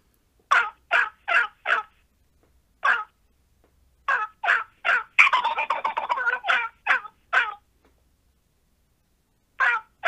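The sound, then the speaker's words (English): A person vocally imitates a wild turkey gobble, sped up to sound like a wild Mississippi Eastern turkey: clipped, bright yelps in quick groups, then a loud, fast rattling gobble in the middle, more yelps after, and two final notes following a pause. “That's how I learned to gobble, and then I learned to speed it up and try to sound more like a wild Mississippi Eastern.”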